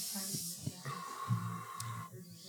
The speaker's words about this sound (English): Blowing the bad smells off. Yeah. You ever try to do that, you know?